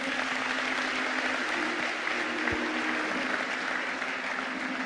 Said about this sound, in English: Let's greet him with a round of applause. Come on.